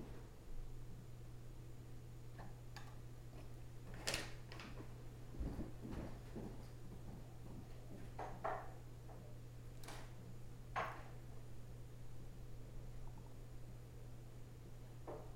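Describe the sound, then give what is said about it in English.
A man knocks a cupboard door open, then sets a jar of peanut butter, a small bottle of Tabasco sauce and a salt shaker down on a counter with several sharp taps and clinks, over a steady low room hum. “He has removed a jar of peanut butter, a small bottle of Tabasco sauce, and a salt shaker from a cupboard, and he has placed them on the counter.”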